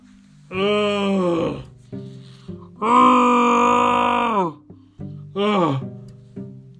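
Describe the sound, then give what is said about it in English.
A voice imitates Anakin groaning in pain as he hits the ground and slides towards the lava: three loud, strained vocal groans, the middle one longest, each with a harsh pitch that bends downward, separated by short breathy pauses. “Anakin groaned in pain as he hit the ground and slid towards the lava, stopping right before he hit it.”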